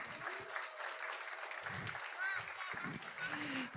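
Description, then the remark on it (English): A crowd applauds steadily for a group of children, a dense wash of many hands clapping at once, with scattered voices and cheers rising through it. “Can you guys clap for these kids for me?”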